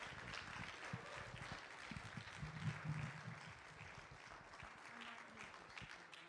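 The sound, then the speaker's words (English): An audience applauds steadily, a dense crackle of many hands clapping at an even level for several seconds, with faint murmuring voices underneath. “After you clap, go ahead.”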